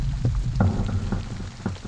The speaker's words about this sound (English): And then I kind of liked, it reminded me of rain as well with some of the sound of it. So then I literally put the sound of rain with it.